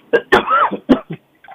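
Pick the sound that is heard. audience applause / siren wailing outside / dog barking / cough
cough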